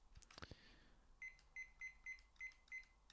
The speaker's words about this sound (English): So, as always, got my wee cooking timer here.